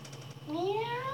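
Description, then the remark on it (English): A single drawn-out cat meow rises steadily in pitch after a brief quiet moment, clear over a low, steady background hum. “Oh, I ain't scared of a little pussy. Cat.”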